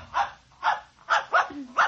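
A puppy named Mr. Blister barks five times in quick, evenly spaced, sharp yaps, with no one talking over it.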